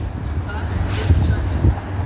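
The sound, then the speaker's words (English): A bus rumbles by, its deep engine drone steady for a couple of seconds, with faint murmuring voices in the background. “Yeah, the bus has talked to y'all here, so that's good and digital.”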